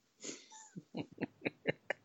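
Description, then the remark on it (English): A voice imitates a water buffalo snoring as it sleeps on the ground: a long breathy wheeze followed by a quick series of five or six rhythmic snorting grunts, fairly loud, with no talking. “And here we hear the sound of the water buffalo as it sleeps in the ground, quite peacefully, snoring away.”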